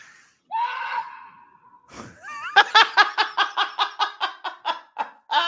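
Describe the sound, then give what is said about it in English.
A person does a scream call: a long, loud wailing call that falls in pitch, then breaks into a rapid run of about a dozen rhythmic whooping bursts, with no other talk. “going to do a scream.”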